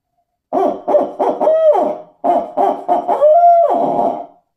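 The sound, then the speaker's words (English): A loud Harrison owl hooter call used in turkey hunting, imitating the who-cooks-for-you cadence: two phrases of quick rhythmic hoots, each ending in a long, drawn-out falling note, with no talking. “Yeah, so the cadence for an owl call is the who kooks for you all. So this is our new Harrison hooter.”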